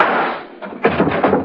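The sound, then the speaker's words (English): A loud, sharp gunshot rings out and fades as it smashes a door lock, then a heavy crashing clatter follows as the door is pushed in, with no voices. “Can you smash the lock with one shot, Mike? I think so, boss. Right after you shoot, I'll push the door in.”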